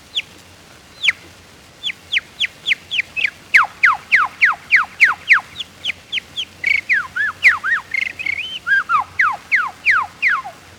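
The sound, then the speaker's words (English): A person whistles through their lips in imitation of birdsong, using the lips to start and stop each tone as a bird uses its beak: a quick, steady series of clear, downward-sliding chirps, fairly loud, briefly breaking into warbling twitters before the rapid sweeps resume. “All birds, while singing, use their beak to start and stop the tone. I do the same with my lips.”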